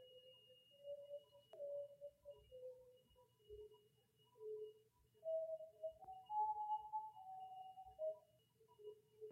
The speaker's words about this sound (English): I opened the window so you could hear the flute music because it's ridiculous. I hope you can hear it. Let's all just listen for a second.